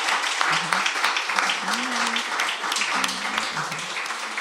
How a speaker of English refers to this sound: Let's give a round of applause to Dinga McCannon. Thank you.